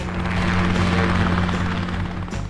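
A helicopter's rotor blades whir steadily and loudly, a continuous droning hum with a low throbbing tone and broad rushing noise throughout, with no voices.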